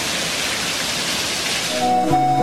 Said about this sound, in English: Burst water pipes continue to destroy thousands of homes and businesses. Oh my God! Look how much water poured into this apartment building.